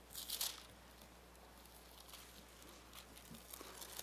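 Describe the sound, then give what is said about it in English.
Soft papery rustling from thin Bible pages being turned to the book of Isaiah, with a brighter flutter at the start and faint scattered crinkles after it, quiet, with no one speaking. “Oh, I love the sound of Bible pages turning.”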